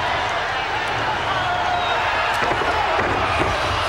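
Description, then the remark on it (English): A capacity arena crowd at a wrestling match roars steadily and continuously, a dense wall of cheering voices chanting USA behind Hacksaw Duggan as he tries to knock Yokozuna off his feet, at a constant loud level throughout, with scattered thumps and shouts rising out of the din. “Undaunted, Hacksaw, with the capacity crowd behind him, chanting USA, would try it again.”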